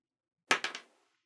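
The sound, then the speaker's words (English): Worn, hard-to-read dice clatter across a table in three quick, sharp clacks, each a little softer than the last, then fade into silence. No one speaks. “These dice have seen better days.”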